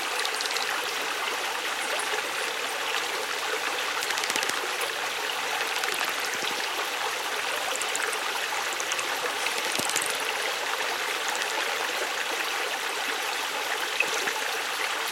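flowing stream water

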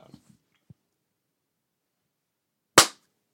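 hand clap

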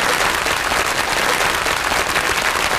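applause

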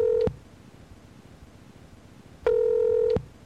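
telephone dialing and ringing

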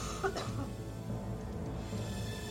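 dry cough

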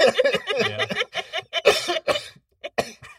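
hacking cough

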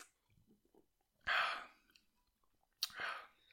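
sipping beer

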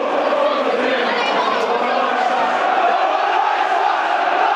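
stadium crowd cheering

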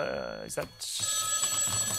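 mobile phone ringing

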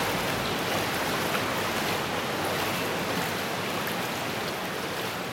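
flowing water

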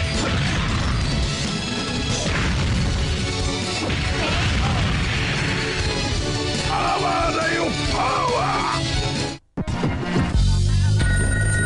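telephone ringing

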